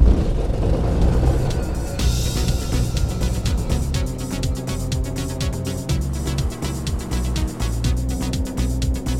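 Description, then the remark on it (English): The engine of a Lake Amphibian, a rare small amphibious flying-boat airplane, runs loudly and steadily as it sets off, a deep droning hum with a rapid rhythmic pulse that shifts slightly in pitch partway through. No one speaks. “With that, we're off in Bill's pride and joy, a lake amphibian, literally a flying boat.”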